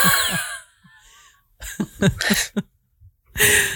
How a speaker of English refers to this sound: And we live in very noisy houses. And apparently, we both can only breathe out of our mouth.